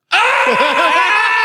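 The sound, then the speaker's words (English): A person screams at the top of their lungs on hearing a secret word: a loud, sustained scream starting abruptly and holding at full strength, with wavering harmonics and strained, rasping vocal tone. “Preferably mouth away from your microphone, but, you know, just you hear the secret word, scream at the top of your lungs.”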